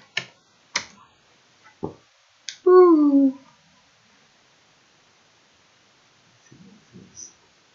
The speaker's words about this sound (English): Let's see. You can go to, can you hear me typing, can't you?